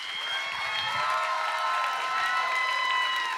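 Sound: audience applause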